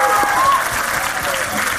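An audience applauds in a steady, dense wash of clapping that stays loud and even throughout, with a few faint whistles or cheers rising briefly above it.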